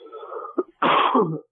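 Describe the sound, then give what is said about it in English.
A raspy throat clearing from someone recovering from a sinus infection rumbles for a moment, then breaks into a loud, harsh cough burst, with no talking around it. “Also, I'm very sorry for any coughing and clearing in my throat.”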